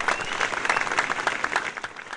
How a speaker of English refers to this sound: Yay! I'm clapping for myself. Hooray!